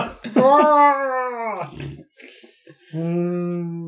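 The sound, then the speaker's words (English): A voice imitates reindeer noises: a loud, wavering moan that bends upward, a short gravelly grunt, then a steady low droning call held to the end. “If it's money you want, reindeer noises in the background.”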